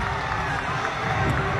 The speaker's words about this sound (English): And the Panthers trying to get this crowd here at Center Park standing and cheering as they get ready to defend on fourth and one.